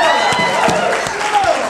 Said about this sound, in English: Come on, give them a big hand of applause.